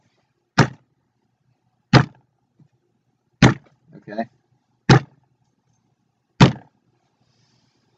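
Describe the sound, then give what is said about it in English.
Five heavy, booming thumps of giant robot footsteps, baby Mechagodzillas stomping toward the shore about a mile away, land at a slow, even pace, each one loud and sharp. A single brief spoken word slips in between two of the stomps. “As you approach the shore, you hear thumping.”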